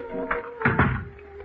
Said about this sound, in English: And I locked the door behind me. Maybe I could fool a burglar into thinking I had something worth stealing.